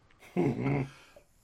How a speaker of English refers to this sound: It the dog? It's the dog.